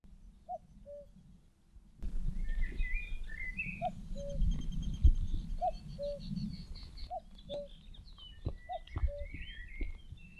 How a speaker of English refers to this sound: Now that cuckoo calling has set off a lot of small birds, and they're all keeping lookout to try and scare it off if it comes near them.